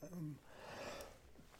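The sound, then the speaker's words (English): A person coughs in rough, breathy bursts after a brief voiced sound, with a sharper cough cutting in at the very end. Moderately loud. “Can't stop coughing.”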